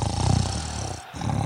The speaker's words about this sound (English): You were still snoring then while you were saying sorry. That's a talent. It took me about 10 minutes to cut that snoring sound effect.